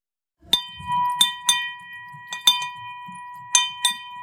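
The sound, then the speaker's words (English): A small handbell, a money bell rung to celebrate something, rings out sharply several times in an irregular rhythm, each bright metallic strike leaving a sustained ringing tone, fairly loud, with faint low rustling beneath. “So we at Hudson Kitchen have what we call money bell that we ring when we're celebrating something.”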